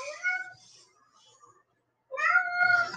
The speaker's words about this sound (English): Oh, there's my cat. Just ignore him.